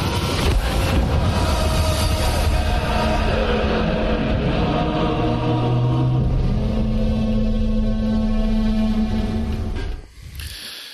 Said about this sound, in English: Man, that foghorn sounds like a kaiju. A what? Like a Godzilla type monster. Oh, yeah, it sure does.